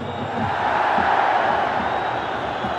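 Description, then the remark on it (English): A stadium crowd of just under 91,000 at a football match involving Barcelona roars and screams loudly in a sustained, dense wall of noise that swells slightly and holds steady throughout. “The crowd, listen to how loud them screams are.”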